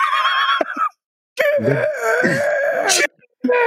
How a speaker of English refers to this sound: Exactly how long was that scream? I really want to know. It doesn't tell me, but it's at least like this. 30 seconds. This death scene is as long as Boromir's.